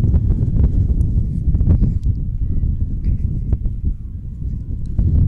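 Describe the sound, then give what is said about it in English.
Gusty wind at a ball game buffets the microphone with a loud, continuous low rumble and thumping bursts that swell and ease across the whole stretch, with no clear voices over it. “And again, the wind really giving me a gust now.”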